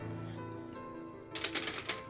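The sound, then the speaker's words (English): Dice are scooped up and rolled, a quick run of sharp, clustered clicks and rattles near the end, over a steady low background hum with no talking. “It's going to be easier just to grab new dice so I can count it all.”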